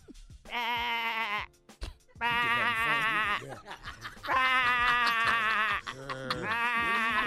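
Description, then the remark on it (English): A person imitates a sheep with four loud, drawn-out, quavering bleats, separated by short pauses and faint murmuring. “do a sheep.”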